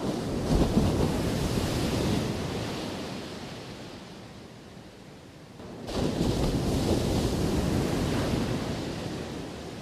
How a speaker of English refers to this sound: The sun was setting on the open ocean, and we sat on a bench near the water. A silhouette could be seen from afar as 6 foot high waves were crashing against the shoreline.